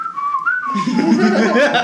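A person whistles a brief, wavering tune for under a second before louder voices and background chatter take over.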